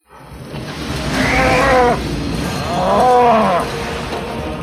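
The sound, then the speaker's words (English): A cow moos twice, long warbling bellows about a second apart, over a constant roaring rush of wind: a sound effect from the movie Twister of a cow going by in a tornado. “It was a cow going by in a tornado in the movie Twister, which we covered in episode number 58.”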